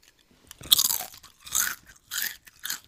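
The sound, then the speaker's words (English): Loud crunching of sea salt potato chips being chewed, four bright bursts in an uneven rhythm with brief quiet gaps between bites, and no talking. “And they're super crunchy.”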